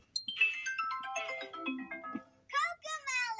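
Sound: phone ringtone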